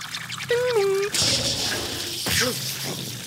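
A short vocal sound gives way to a steady hiss of squirting water lasting a couple of seconds, with a few wet, bubbly drips and splutters near the end.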